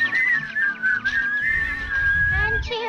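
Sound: person whistling a tune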